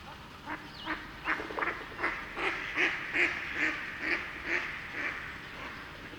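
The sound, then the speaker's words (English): A pair of mallard ducks on a pond quacking: a steady series of about a dozen short, nasal, raspy quacks at an even rhythm, moderately loud, with no voices over them. “There's a pair of mallards on the pond, and they're acting nervous.”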